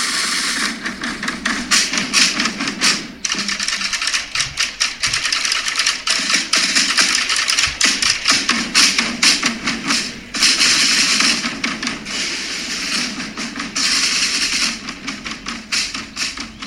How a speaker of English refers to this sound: And talking of loud, let's have a bit of the … drummers.